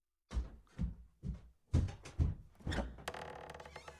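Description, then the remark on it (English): A door closes as an officer leaves the quarters, after a run of heavy, evenly spaced thuds like footsteps walking away, ending in a rattling, creaking latch sound. There is no talking. “Close the door on the way out.”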